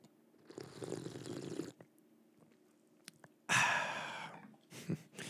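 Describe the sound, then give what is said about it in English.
A wet slurp sound effect with no talking: a soft, drawn-out slurp first, then after a pause a louder, sharper slurp and a short final one. “In your memory, well, not memory, you haven't gone anywhere, but for you, sir, here's the slurp.”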